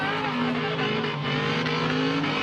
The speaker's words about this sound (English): These hoons burn rubber in plain view of police. He was doing loops. The cops were there, weren't they?